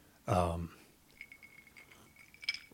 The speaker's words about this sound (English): You are hearing, that sounds nice, the sounds of ice cubes in a lowball glass. Daddy's having a drink.